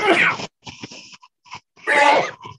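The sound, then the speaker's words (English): Two loud, sharp sneezes separated by about a second and a half of short, quieter breathy sniffs and gasps, with no talking. “I'm gonna sneeze.”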